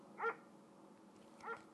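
Two soft, muffled barks from a dog called Res Dog from Linwood, about a second apart, each a short tonal burst, with a quiet background and no talking.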